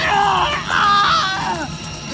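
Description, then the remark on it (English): A man screams in agony, a strained, wavering cry that rises and bends in pitch over about two seconds, loud, with no other talking. “He screamed as it spread through his body, and he was never able to get back on his feet.”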